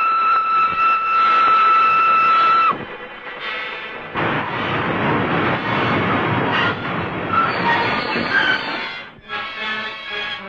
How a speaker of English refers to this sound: For heaven's sake, stop this train!